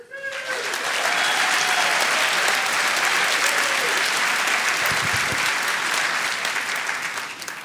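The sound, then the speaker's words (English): A large crowd bursts into sustained applause lasting several seconds, answering a question about whether they live in the best country in the world; dense and steady clapping with a few cheers and whistles mixed in, loud before tapering off at the end. “But by round of applause, how many of you guys think we live in the best country in the world?”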